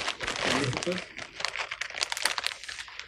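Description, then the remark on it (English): A snack bag crinkles and rustles steadily for about three seconds, crisp crackly bursts filling the high end, with a brief murmur of voice near the start. “You're gonna hear this bag in my munching.”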